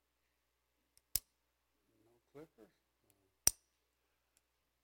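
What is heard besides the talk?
ballpoint pen clicking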